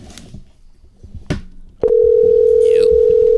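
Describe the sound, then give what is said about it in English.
A couple of sharp clicks as a phone line is picked up, then a loud, steady dial tone hums continuously to the end, with faint room noise in the background, as a call is placed to Larry Flint's Hustler Club in Oklahoma. “Okay, let's call him.”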